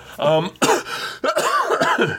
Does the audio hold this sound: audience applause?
no